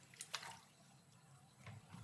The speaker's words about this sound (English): I'm taking a drink of water and just radio silence.